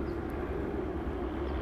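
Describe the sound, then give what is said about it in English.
A steady, heavy engine rumble from a helicopter arriving and hovering in place overhead, droning continuously at a fairly constant level with no voices present. “Oh, I see the helicopter arrive to listen to our broadcast.”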